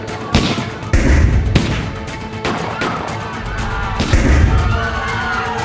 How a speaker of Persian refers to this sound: سیل گلوله به سمت ناصر سرازیر شده.